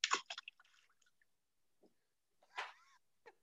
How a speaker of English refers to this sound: He's just typing on laptop, so I mean, it's wrong. Oh, well, yeah. At first, I didn't realize it was a sound, and I thought you were chewing on a pencil.